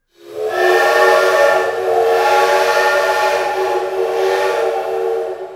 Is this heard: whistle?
yes